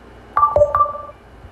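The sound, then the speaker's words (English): A short electronic startup chime of three clear tones, high, lower, then high again, with the last two notes ringing briefly before fading. No one speaks. “Normally I'd play the chime by now.”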